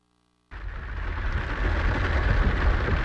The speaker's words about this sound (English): More rain wreaking havoc in California. Over the last 10 days, 12 days, we've had pretty gnarly storms. A string of storms forecasters call atmospheric rivers.